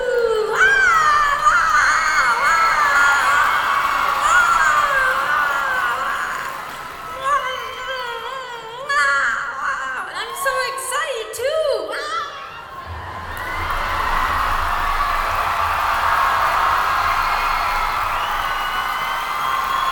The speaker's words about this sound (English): Here's April 9th at the opening night of the, again, an opening night, the opening night of the US leg in Tampa, Florida, and it's interrupted by some screaming crazy fans.